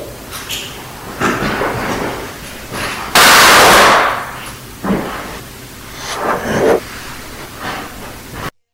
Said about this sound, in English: And then you hear, of course, what sounds like a gunshot. Here it is again.